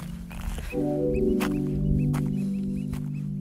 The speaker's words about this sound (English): I live in Juneau, Alaska, and right now I'm walking on an island just across the channel from Juneau called Portland Island. Those birds you hear are apparently called oyster catchers, and they're pretty annoying. They've been yelling all morning.